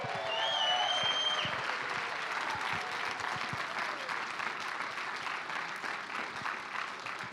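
Sustained applause from an audience in Columbus welcoming a guest speaker, a dense steady patter of clapping that holds strong for about seven seconds, with a few faint whoops and whistles in the first second.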